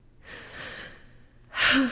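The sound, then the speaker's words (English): A woman takes a long, shuddering gasp: a drawn-out, breathy inhale wavers for over a second, then a sharper, louder catch of breath ends it, unaccompanied by speech. “She takes a long, shuddering gasp.”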